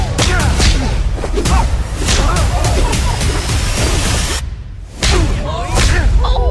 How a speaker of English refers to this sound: Audible slaps and hits.